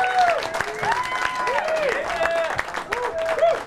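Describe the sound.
A crowd applauds steadily as a Christmas poet and a holiday turkey come up, many hands clapping in a dense continuous patter, with voices whooping and calling out over it throughout.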